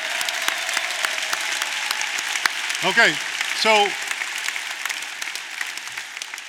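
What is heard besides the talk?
audience clapping hands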